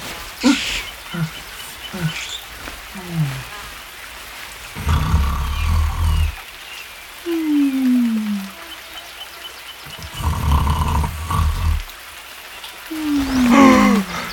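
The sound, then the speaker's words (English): Loud, rumbling snores come in repeated heavy rasps, each followed by a long, falling, whistle-like groan, in a slow, steady rhythm with no talking. “This is some devilish new form of torment! Snoring me to death!”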